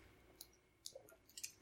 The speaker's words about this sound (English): I'm going to open up this nice frosty can of Austin East Cider's pineapple cider.